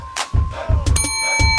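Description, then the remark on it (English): A bright quiz answer bell rings out with sustained, shimmering metallic tones, struck sharply near the end, over low background rumble and a few short bursts of chatter. “Oh, who won that bell?”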